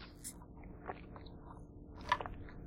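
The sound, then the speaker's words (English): Someone takes a sip of water: a few soft, wet mouth clicks and swallows spaced over a couple of seconds, with a slightly louder gulp near the end. No one speaks. “Pause for a drink of water because I'm talking a lot here.”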